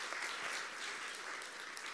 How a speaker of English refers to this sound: I love the fact, since I've been here at this church for many years, that the pastors have always been open like that and shared about the finances. So let's just give them a clap of honor for just doing that.